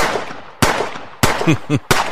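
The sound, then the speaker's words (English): Three loud, sharp gunshots ring out at a gas station, hitting its bulletproof windows, about two-thirds of a second apart, each a sudden crack with a short decaying tail, and a brief vocal sound between the second and third. “Like, you can, they started hitting the windows in the gas station, but they were bulletproof, so they just, you know, shattered.”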